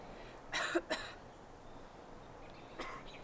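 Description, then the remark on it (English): A few short, raspy cough-like bursts: a pair close together near the start, then a softer one after a pause, sounding like a voice imitating a cough against a quiet background. “I just coughed. I mimicked her coughing.”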